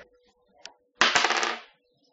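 A die is rolled, giving one small click followed by a close, bright rattling clatter across a hard surface that lasts under a second and then stops. No one speaks.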